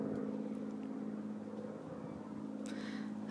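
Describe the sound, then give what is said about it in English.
A steady, low engine drone from an aeroplane passing overhead in the sky, even in volume, with a faint hiss rising near the end. No one speaks. “By Jove, this is an aeroplane.”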